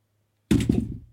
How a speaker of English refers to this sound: Sorry. Just dropped my phone.